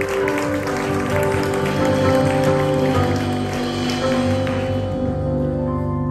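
An audience claps steadily for about six seconds, a dense, even patter of many hands, with a low droning hum running underneath throughout.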